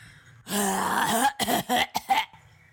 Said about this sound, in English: the good witch, appears and coughs on everyone.